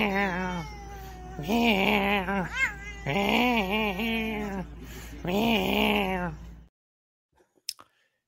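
A cat meows loudly in four long, drawn-out, wavering yowls, one after another, then goes silent apart from a couple of faint clicks.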